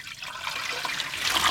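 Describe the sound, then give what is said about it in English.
Water sloshing and pouring out of water sample bottles 2, 3 and 4, dumped during a home water test for Louisville Water, in a steady, hissy splash that builds slightly louder toward the end, with no talking. “Okay, now I'm supposed to dump 2, 3, and 4.”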